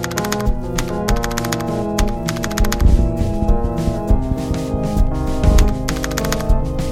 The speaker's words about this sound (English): She hangs up the phone and begins to type. Her fingers gliding over the keys in front of her.